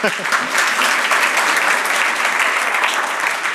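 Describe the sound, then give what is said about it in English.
An audience claps steadily, a dense wash of many hands applauding at an even loudness for the whole stretch, with a hint of a voice at the very start. “That's nice that you clap your hands, because I'm doing that from your tax money.”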